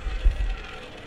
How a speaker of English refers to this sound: I'm going to spin. If it lands on black, I get black. If it lands on red, I get red.